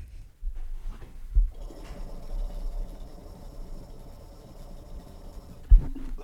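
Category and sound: household object, water bubbling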